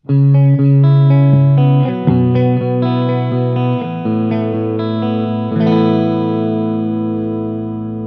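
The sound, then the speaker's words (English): Loud, sustained instrument notes and chords played through the more intense vibrato setting, depth about halfway, the pitch wavering steadily as the notes change, with no talking over the playing. “So this is the more intense setting for the vibrato.”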